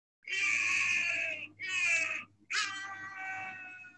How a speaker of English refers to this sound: Let's get a nice good sound of a human scream. By the way, in what context was this recording taken? They slapped him and he screamed.